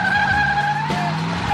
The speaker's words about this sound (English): Cops come back, ask Elwood to step out of the car. Mm-hmm. He puts the car in gear, and we're into our first car chase.